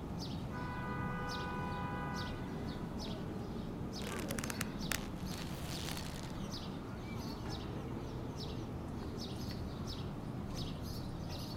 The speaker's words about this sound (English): The sound of the bustling city in the morning, a call and response of cars and birds.